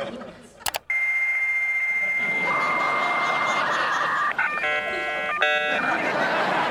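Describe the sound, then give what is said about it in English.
A dial-up modem on a first home computer connecting to the internet, as shown in That '90s Show: a click and dial tones, then a long steady whine that shifts into hissing, screeching static and stacked warbling handshake tones, loud and uninterrupted. “And it shows them getting their first computer and signing on to the internet. And there's that sound.”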